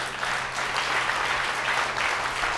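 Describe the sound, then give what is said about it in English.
An audience gives the Lord a big hand clap, sustained, dense applause of many overlapping claps forming a steady wash of sound at an even, fairly loud level throughout. “Can we give the Lord a big hand clap?”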